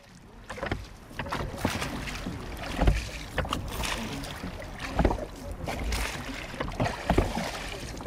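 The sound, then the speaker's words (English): A wooden curragh rowing boat pushes off from the pontoon at Shandon Boat Club into the River Lee, with knocks and scrapes against the hull, water sloshing and splashing, and a light breeze buffeting the microphone; no voices. “joined the group where they pushed off into the River Lee from the pontoon at Shandon Boat Club”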